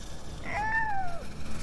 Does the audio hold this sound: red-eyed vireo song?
no